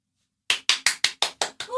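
A brief burst of crisp hand clapping from a small live studio audience: about seven sharp claps in a quick, steady rhythm after a moment of silence, with no talking.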